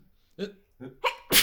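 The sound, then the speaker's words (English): A person sneezes: three short, voiced gasping breaths build up, then a sharp, noisy burst of the sneeze itself cuts off the end. “I'm going to sneeze.”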